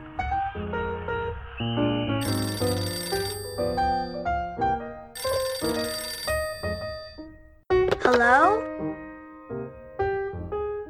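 A telephone rings twice in bright, jangling bursts about two seconds apart at Charlie Brown's home, a call from Peppermint Patty, layered over a melodic instrumental background, with a sliding, warbling tone near the end.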